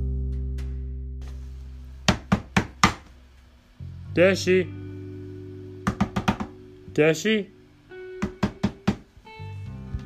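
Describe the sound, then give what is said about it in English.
Sharp knocks on a door upstairs come in quick sets of three, fairly loud, with short wordless vocal sounds in the pauses between the sets. “I knocked on her door.”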